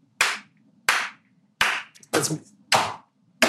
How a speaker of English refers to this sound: Let's just give that one a clap for sure.